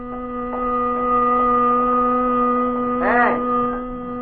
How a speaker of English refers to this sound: I guess I fell onto the horn into my steering wheel. I couldn't seem to sit up straight and get away from the noise.